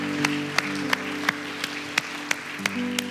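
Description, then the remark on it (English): An audience applauds five individuals who raised their hands, in a steady, dense wash while music plays underneath, sustained keyboard chords with a regular beat sharply punctuating the clapping about three times a second. “Can we give these five individuals that raised their hand a huge round of applause?”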